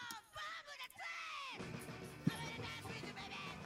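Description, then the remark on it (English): A loud, packed bar called Morbo's, full of all kinds of aliens: patrons yell and whoop over one another in a dense wall of crowd noise, with raised voices swelling and a sharp thump cutting through the din. “And so you enter this bar and it's fucking loud. It is packed.”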